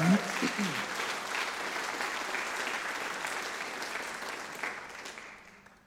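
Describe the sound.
An audience claps in a steady round of applause lasting several seconds, dense and even, with a brief voice at the start before the clapping tapers off at the end.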